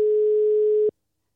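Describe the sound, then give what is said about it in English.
A steady telephone dialling tone, heard before a phone call is made, hums alone for just under a second, then cuts off abruptly into silence. “All right, we're going to have to call the Oracle for the third...”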